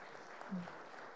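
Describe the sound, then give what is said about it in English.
An audience applauds with dense, steady clapping that holds an even loudness throughout, with a brief low tone rising briefly out of the noise partway through. “Let's give you guys a round of applause before we go any further, I think.”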